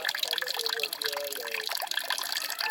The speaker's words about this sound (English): And then that water that was up in that yellow bowl comes through that Sawyer filter you're watching there. It's gravity-fed. It comes out absolutely clean.